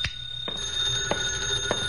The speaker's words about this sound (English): My phone was ringing when I unlocked the door.